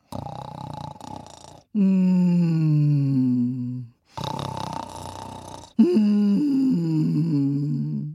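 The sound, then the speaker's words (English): A voice imitates a king snoring loudly like a bear: two big cycles, each a harsh, raspy inhale followed by a long, low, droning exhale with a wobbling pitch. No other sounds. “Later that night, the king was fast asleep and snoring like a bear.”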